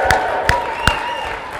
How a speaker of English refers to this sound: And when these people are baptized, we are going to cheer them loud. Let's practice one time. Woo-hoo!